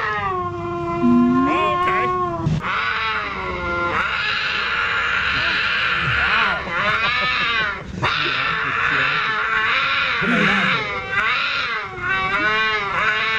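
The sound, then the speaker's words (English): Loud, continuous wailing yowls of a lynx mating call, rising and falling in long harmonic howls that ramp up in intensity, with no other voices. “Have we ever played Lynx mating noises on the show before?”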